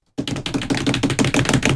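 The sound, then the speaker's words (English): An improvised drum roll before a new book club choice is announced: a rapid, steady flurry of sharp taps, like fingers drumming on a tabletop, starts abruptly and holds at an even, fairly loud level for under two seconds, with no voices. “Should we do a drum roll?”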